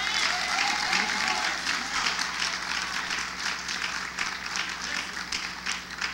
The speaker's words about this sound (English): So why don't we give all the couples a round of applause?